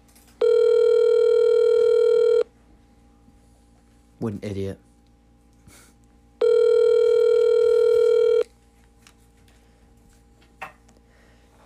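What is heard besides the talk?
phone call ringing out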